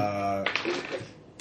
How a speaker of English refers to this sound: You roll dice. The dice.